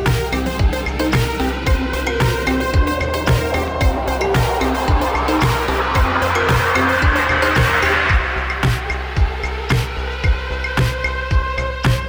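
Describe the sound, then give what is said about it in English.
A car engine roars and revs over a steady drone, with repeated bursts and tires skidding and squealing, loud throughout with no talking. “I want to be a fire truck. Vroom, vroom.”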